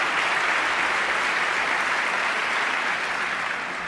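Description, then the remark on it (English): A crowd applauds steadily during a speech, after a line calling for a new program of national rebuilding, a dense wash of clapping that holds at an even, fairly loud level for the full few seconds, with no voices standing out. “The problem is what he's about to say after this stupid applause.”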